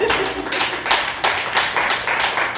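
Hands clap steadily for a couple of seconds, a dense run of sharp, closely spaced claps at a brisk, fairly even rhythm, moderately loud with no voices.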